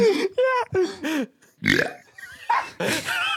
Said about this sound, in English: He burped while I was live streaming, and it just sounds like that. That sounds like whenever a Goomba gets stepped on by Mario.